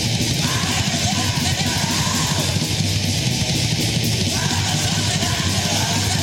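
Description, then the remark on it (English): Harsh, shrieked black metal vocals from a played album or EP recording tear through a dense, loud wall of distorted guitars and rapid drumming, steady and unrelenting for the whole stretch with no spoken voices. “he is shrieking like, in a way that I've never heard from this year.”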